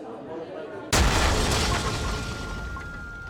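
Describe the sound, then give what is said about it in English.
A sudden, loud bomb explosion at the busy Argana cafe on Jama El Fina Square in Marrakesh, Morocco, bursts in about a second in, followed by a sustained roaring, crackling wash of noise and debris that slowly fades, with a faint steady tone ringing underneath. “A massive explosion has ripped through a busy cafe in the Moroccan city of Marrakesh, killing at least 15 people and wounding 20 others.”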